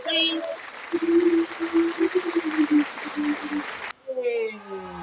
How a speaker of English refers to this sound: I'm gonna give you a clap for that right here.